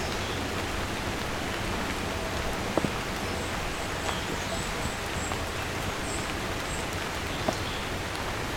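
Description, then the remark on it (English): Steady outdoor rain hisses continuously across the whole stretch, with occasional louder drop ticks and faint bird chirps high above the wash of rainfall. “And here comes the rain again.”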